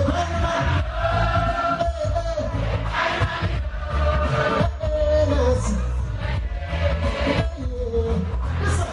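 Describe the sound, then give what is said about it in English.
A large concert crowd sings along in unison, a loud, continuous wash of many voices carrying a melody over a steady bass-heavy musical backing, with no pauses throughout. “had the crowd singing along.”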